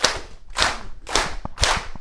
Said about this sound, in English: You know, you got to do a little bit of dancing every now and then. Come on, let's go, let's get a clap.